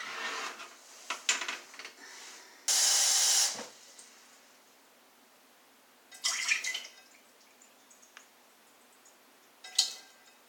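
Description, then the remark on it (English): A brief, steady gush of lukewarm water lasts about a second as 1.5 cups are measured and poured to mix with yeast and salt, surrounded by scattered clinks, splashes and handling noises, with no talking. “Okay, now I'm going to get 1.5 cups of lukewarm water.”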